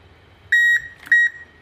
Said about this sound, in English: It should give us a nice beep on the kettle soon.